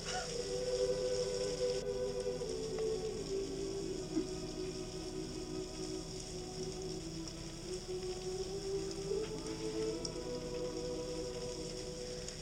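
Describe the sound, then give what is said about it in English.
Steady rain falls on Christmas Eve, a continuous hiss with a low, wavering hum running underneath. Nobody speaks, and the sound holds at an even, moderate level. “It didn't help that it was raining instead of snowing.”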